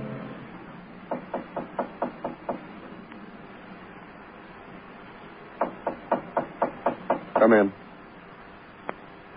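Two bursts of sharp, evenly spaced knocks on a door, about six raps each, separated by a pause, followed by a brief rattling scrape and one last faint tap. Moderately loud.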